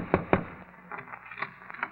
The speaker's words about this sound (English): And once again, the fates look down and laugh at Nicholas Arden as he tiptoes to the door of Ellen Arden, wife number one. The fates laugh, and Nick taps on the door.